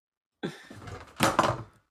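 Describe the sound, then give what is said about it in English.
A whole camera falls and slams against a desk: a short knock, a brief rattling scrape, then a louder clattering bang, fading within about a second. “What'd you drop? My whole camera fell.”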